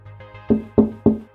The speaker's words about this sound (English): Someone knocked on the car window.